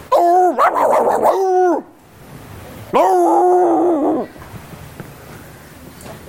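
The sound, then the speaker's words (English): A man's voice mimics a pack of dogs barking, with two loud bursts of rapid, repeated yelping calls separated by a brief pause, forceful. “One day, there's a pack of dogs running up and down the road.”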